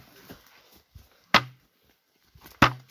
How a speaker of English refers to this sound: This is not a good Squatch stick. What kind of tree knock is that?